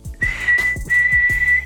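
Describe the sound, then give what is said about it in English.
A train whistle sound effect: a steady, high-pitched whistle sounds in two long blasts with a brief break between them, over a rhythmic, low chugging of a steam engine. “All aboard! Podcast train moving!”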